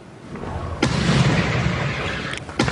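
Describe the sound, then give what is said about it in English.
A homemade hail cannon, built from sheet metal by a vineyard owner in Hamilton, fires a loud, sharp boom that rolls into a long rumbling roar, followed by a second blast near the end. No one speaks. “People liken the booms to explosions and bombs, but police just could not figure out where they were coming from. But now we know they are apparently the result of a homemade hail cannon.”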